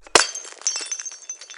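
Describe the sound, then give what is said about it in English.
A glass champagne bottle smashes on the front of a boat to christen it, one sharp, loud crash, followed by a second or so of bright, scattered tinkling as shards fall and settle. “I have the champagne Thomas gave us for our wedding. Should I christen the boat with it?”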